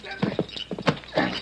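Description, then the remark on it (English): A saddled horse's hooves clop in a few uneven, hollow knocks, with a short snorting whinny from the animal mixed in among the steps. “I'll get the saddle off the horse.”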